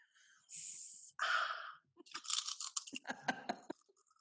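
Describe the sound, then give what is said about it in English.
Loud crunching and munching of a crunchy chip being chewed, a run of crisp snaps and crackles in quick irregular bursts, preceded by a couple of breathy, hissing mouth sounds. “Well, then you have to just do it super crunchy like this. Or like ASMR where you're like, oh, this is such a good chip.”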